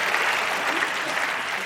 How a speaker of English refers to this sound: But I want to invite one more round of applause for you and for all of our debaters.